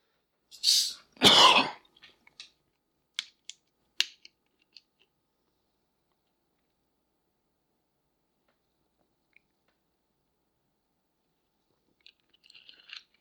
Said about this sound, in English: And excuse me while I get a sip off of my Dr. Pepper here, because I've been running my mouth almost nonstop for half an hour now or something like that.